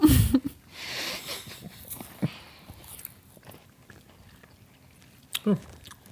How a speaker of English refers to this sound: We have a Kit Kat here, gold-flavoured Kit Kat. We are going to taste it. Mm. We've dunked it, and now we're sunk in it.